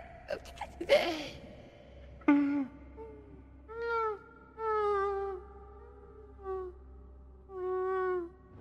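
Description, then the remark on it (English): A burrowing creature replies in its own language of chirps, whirs and chutting: a few quick clicking, chutting bursts, then a run of five or six short, tonal, warbling calls that rise and fall in pitch, with brief gaps between them. “So the rest of you, Ashina looks up and starts speaking essentially in its language, which is a series of kind of chirps and whirs and chutting, and it replies.”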